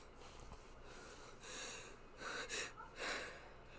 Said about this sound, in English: Oh my gosh. I was gonna sneeze and then beat it out. Okay. Psych.